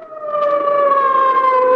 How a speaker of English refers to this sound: Or the wild shriek of a siren as an ambulance catapults through the city's darkened streets.